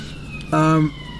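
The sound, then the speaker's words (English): A short, loud blast of an emergency vehicle siren in King's Cross, a single steady harmonic tone lasting under half a second, rising above a low background hum from outside. “I think Sheffield United will play a weakened team, but sirens there? Sirens?”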